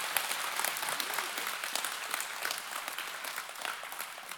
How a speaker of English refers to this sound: Would you just give a big round of applause to you? Just all of you.